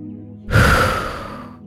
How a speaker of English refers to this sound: Begin by exhaling completely through your mouth, making a whoosh sound.